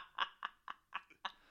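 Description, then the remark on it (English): A person imitates a lamb bleating: a quick, wavering run of five or six short, nasal pulses at a steady rhythm, fairly loud and with no other talking. “I had the best lamb impression.”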